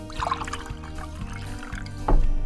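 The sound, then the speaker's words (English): Water pours steadily into a glass for a couple of seconds, a continuous trickling splash with a slight gurgle that swells a little louder near the end. No one speaks. “So I'm just going to take a little bit of it here.”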